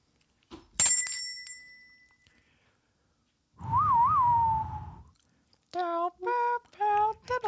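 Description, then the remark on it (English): A single bright bell ding, an improv beginning bell, rings out clearly and decays over a couple of seconds, followed after a pause by a warbling whistle and a short run of whistled notes. “I'm going to use the improv beginning bell to get us started.”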